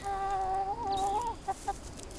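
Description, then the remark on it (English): Backyard chickens cluck: a drawn-out, wavering call followed by two short, sharp clucks, with no talking. “Tick-eating birds, like backyard chickens or guinea fowl, are often touted as a green way to keep ticks down.”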